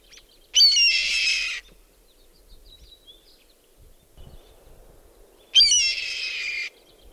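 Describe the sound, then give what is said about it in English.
A red-tailed hawk gives two loud, harsh, raspy screams, each lasting about a second, separated by several seconds of near silence with faint background noise. “In the movies, even like you'll see when there's a bald eagle, they'll often use the sound of a red-tailed hawk instead of the bald eagle call, just because it sounds cooler.”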